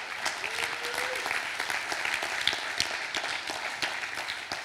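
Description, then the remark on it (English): An audience claps steadily, a dense, continuous patter of many hands at moderate loudness with scattered sharper claps, and no speech over it. “Yeah, clap.”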